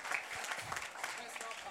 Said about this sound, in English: Hey, look how the sisters are clapping. In a long time, I felt sisters clapping for me. Like, sisters, clap one more time. Clap one more time.